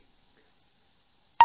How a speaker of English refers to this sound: Someone's phone just went off. Who the fuck's phone?